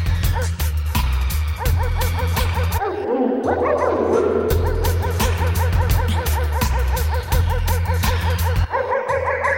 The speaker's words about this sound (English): Get those dogs yapping.